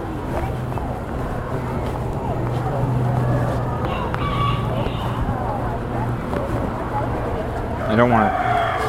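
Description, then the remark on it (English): Chickens crowing in a neighborhood over a steady low engine rumble and busy outdoor noise, a faint call midway and a clearer, louder crow near the end, with indistinct voices in the background. “I don't want to stop because I always draw attention when I stare, but I always find these chickens to be very fascinating.”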